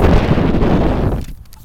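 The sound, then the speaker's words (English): Loud wind buffets a microphone, producing a heavy, low rumbling roar with crackly bursts that runs steadily for over a second, then quickly drops away to near quiet. No one speaks. “Why did it just get so windy as soon as we start talking?”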